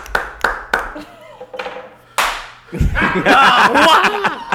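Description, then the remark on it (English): A single sharp, stern hand clap cracks out after a few lighter taps, then voices break into lively talk and laughter over it. “He get one stern clap. Well, that was a church clap.”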